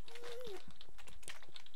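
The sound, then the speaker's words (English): Rapid, irregular mouse clicks tap away quietly for the whole stretch, with a short, faint gliding tone near the start, as someone clicks everywhere trying to kill something. “Ah, I'm just clicking everywhere in the vague attempt at killing something.”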